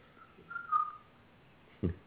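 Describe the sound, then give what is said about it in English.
A pet bird named Blue, indoors, gives a single sustained, steady mid-pitched whistle lasting about half a second, followed after a pause by a brief low thump. No one speaks. “There's a bird in here.”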